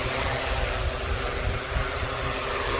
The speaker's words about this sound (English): We were taken to a field away from Kiev. It was -5 where we arrived. When we arrived, it was snowing, and there's a whole field of people testing these drones. This is what it sounded like.